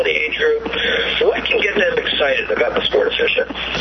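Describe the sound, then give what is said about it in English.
A voice talks through a thick, smeared reverberation, each phrase trailing into overlapping repeats so the speech sounds doubled and washed out, like a hollow echoing broadcast. “Why is there an echo?”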